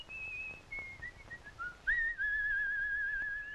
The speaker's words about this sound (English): The whistle is a nice touch.